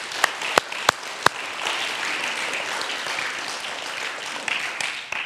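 A crowd applauds steadily for several seconds, a dense wash of many hands clapping, opening with a few sharp, loud individual claps that stand out at the start.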